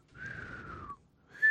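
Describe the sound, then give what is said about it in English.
A long whistle slides slowly downward in pitch like a falling bomb, over a low rumble, then a second, louder whistle starts abruptly after a short pause. “Yeah, they sound like. Bombs dropping.”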